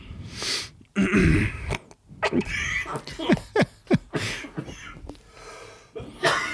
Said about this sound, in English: I'm so sorry for my coughing. I have coronavirus.